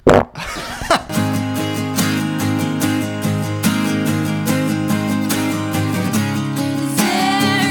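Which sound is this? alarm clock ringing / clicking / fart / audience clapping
fart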